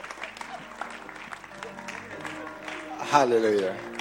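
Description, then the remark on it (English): A roomful of people claps steadily in a sustained, loud burst of applause to welcome their bishop, with a voice calling out over the clapping near the end. “your clapping is not...”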